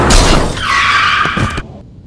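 Car tires screech loudly in a sustained, high-pitched skid lasting about a second, with a few dull knocks near the end before the sound cuts off abruptly. No one speaks.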